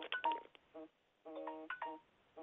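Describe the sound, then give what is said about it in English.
A phone alarm chimes with a run of bright electronic beeps and tones in short bursts and pauses, repeating a jingly melodic pattern. It is fairly loud and plays alone, with no talking. “My alarm is going off, so we must be done recording.”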